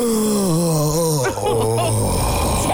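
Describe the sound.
A voice imitates a long, wavering moan, low and sustained with a slight dip in pitch partway through, then dropping lower and fading into a breathy groan, with no words spoken.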